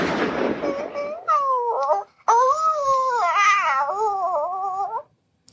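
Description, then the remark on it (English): A dog whimpering in two long, wavering, high-pitched whines, the first following a brief burst of rough noise, fairly loud with no talking, from a 2001 Flash animation on a website. “and, you know, they killed a dog.”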